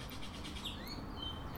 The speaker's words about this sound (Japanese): スズメたちのおしゃべり。